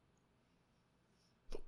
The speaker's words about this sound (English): All of a sudden I have hiccups.